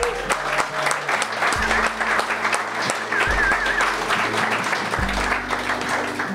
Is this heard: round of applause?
yes